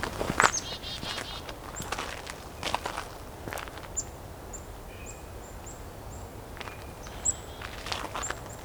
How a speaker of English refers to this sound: So I'm coming up on a flock. Mixed flock, chickadees, nuthatches, sounds like blue jays too.